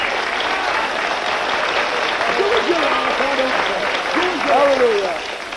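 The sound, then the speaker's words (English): Steady applause from a crowd at a meeting, welcoming a speaker, fills the whole stretch, dense and continuous, with voices faintly calling out underneath before the clapping tapers slightly at the end. “Give him a clap.”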